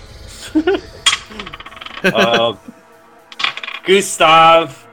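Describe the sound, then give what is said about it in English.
Small dice clatter and rattle across a hard tabletop in a couple of quick bursts, with clicking bounces mixed among muffled voice-like sounds, rolled during a tabletop game to decide a troll's claw attack. “Troll's gonna start swiping with his claws once it, hold on, I gotta roll for this. It's only fair. Where's my five-sided dice at?”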